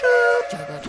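A short, loud train whistle sound effect with a steady, chord-like tone lasts under half a second, then gives way to fainter, lower murmuring sounds.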